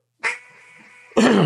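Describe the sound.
A duck call blows a long, drawn-out nasal quack that holds steady for about a second, then a second loud, raspy quack cuts in right after it. No one speaks.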